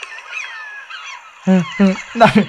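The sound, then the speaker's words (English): A person imitates a seagull call in a deep voice: three loud, deep, honking squawks in quick succession follow faint high chirping birdsong in the background. “You're a deep-voiced seagull.”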